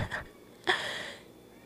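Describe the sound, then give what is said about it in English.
A pet cat meows twice, calling its owner, a brief faint call followed by a longer, brighter, drawn-out meow that fades away; no one is talking. “Is that my kitty cat? Oh my gosh, I thought that was a baby from my neighbors.”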